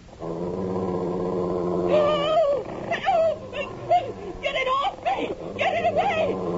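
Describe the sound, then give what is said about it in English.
A wolf attacking a man growls low and steadily for a couple of seconds, then breaks into a string of high, wavering whimpers and whines, fairly loud. “I see the damn thing! It's a wolf!”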